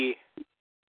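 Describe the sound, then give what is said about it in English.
A single sharp sneeze bursts out loudly and cuts off quickly, followed by a brief, softer vocal sound, then silence. “Bless you.”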